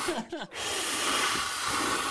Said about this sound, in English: She fills. She fills. You watch her fill each balloon with a helium booster.